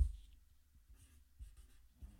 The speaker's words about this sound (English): That dry eraser is dried out. That dry erase marker.